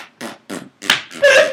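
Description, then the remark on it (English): A voice imitates a fart slipping out while running on a treadmill, with four short sputtering bursts, the last two louder and more buzzing, rising into a squeaky tone at the end. “Yeah, dude, the first thing is having to fart when you're on the treadmill.”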